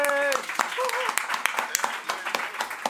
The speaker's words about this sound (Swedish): Grattis till skivan. En applåd för hans nya släpp.